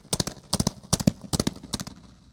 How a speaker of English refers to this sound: We all know how much more interesting voices can sound when they're echoing off walls. These reverberations could even turn the sound of hooved feet into a herd of galloping horses.